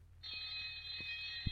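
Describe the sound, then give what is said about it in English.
A school bell rings with a steady, high-pitched metallic tone that starts abruptly and holds without a break, while a few soft low thumps sound underneath. “Just then, the school bell rang.”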